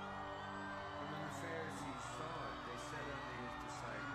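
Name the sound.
excited crowd cheering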